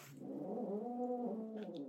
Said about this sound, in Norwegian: Det den katten, eller?